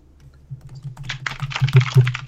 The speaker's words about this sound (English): Shannon is furiously typing.